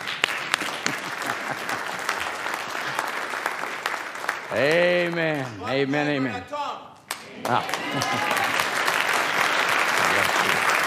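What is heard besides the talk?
audience applause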